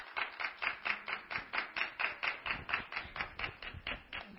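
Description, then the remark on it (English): An audience claps together in a steady, rhythmic beat after a reading of the genealogy of Jesus, sharp repeated claps at an even pace, fairly loud with no talking over them. “Now, I'm not certain why we're clapping, but...”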